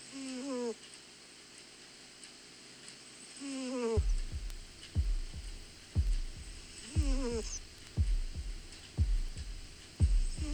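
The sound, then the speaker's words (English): A cat named Ema snores softly while asleep, a steady low thump with each breath about once a second, broken now and then by a brief squeaky, whistling wheeze. “It's an MTV first debut exclusive, My Cat Ema Snoring, which is breathing.”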